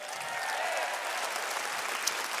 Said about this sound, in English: So Pastor Mark and all of the team, we thank you so much to your family for saying yes and being obedient, for spreading pervasive hope to Hawaii and beyond. Rock Church, can we clap it up for them?